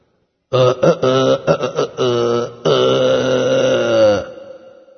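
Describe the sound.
A man's voice does a Tarzan-style yell, calling the jungle animals. It is rough and throaty like a belch-yell, starting in choppy bursts before stretching into one long, loud, wavering cry that fades out.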